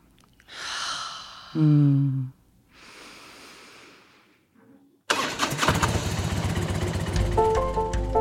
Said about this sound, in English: Let's just inhale through our nose and as you exhale, letting out a deep sigh. Yeah, so I can sense a little, you know, fluttering in my breath. So we'll take three more breaths like that, just inhaling and exhaling.